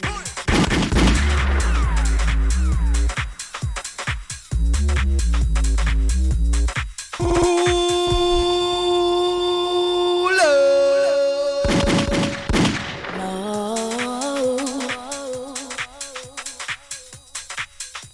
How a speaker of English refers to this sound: They say liquid means swallow. Gunshot means rewind.